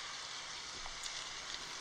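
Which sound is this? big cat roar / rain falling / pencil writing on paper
rain falling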